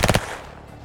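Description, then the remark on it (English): A short burst of automatic gunfire as a gun is swung up and fired: three rapid, sharp, loud shots in quick succession, followed by a brief fading echo with no voices. “You fire a whole bunch of bullets.”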